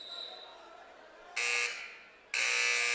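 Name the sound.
basketball arena buzzer sounding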